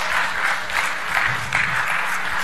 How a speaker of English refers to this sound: I've never heard you guys clap this much. Thanks. You're helping me out because, you know.